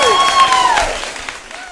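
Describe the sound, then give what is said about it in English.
An audience breaks into steady applause for Caroline Jones and her 50-year association with the ABC, a dense wash of many hands clapping, with a high sliding cheer riding over it at the start before the clapping continues on its own. “Let's just have a round of applause.”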